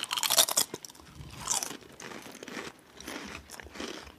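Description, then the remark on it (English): Loud, crisp crunching of all dressed potato chips being chewed, with bright crackly bursts that come in irregular bites and fade into quieter munching, no voices. “You know, in a weird way, I'm getting a bit of a barbecue chip vibe.”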